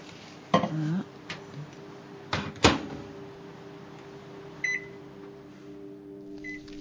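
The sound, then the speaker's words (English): A microwave oven hums steadily as it defrosts a bottle, while a few sharp clunks sound early on, like its door or objects being handled, followed later by two short electronic beeps. “I'm just going to go back to the microwave and see how this bottle is defrosting.”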